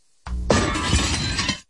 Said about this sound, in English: One thing to read a ratings book and know you're popular, but it's another thing to go there and people are breaking glass, yeah, like rioting.